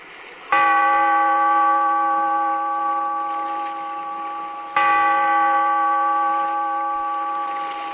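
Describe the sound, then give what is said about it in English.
A large bell, tolled by the bellkeeper in a cave by the restless sea in The Weird Circle, tolls twice, slow and evenly spaced, each loud strike leaving a long, rich ringing hum that fades gradually. No voices are present. “Bellkeeper, toll the bell so that all may know we are gathered again in the Weird Circle.”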